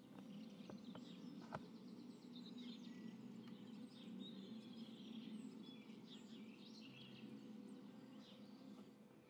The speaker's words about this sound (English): A lot of birds. A lot of bird activity today.